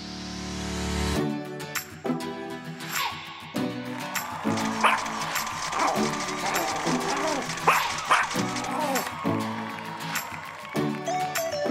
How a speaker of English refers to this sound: Celebrity Pop of the Week. Woof woof. Woof woof.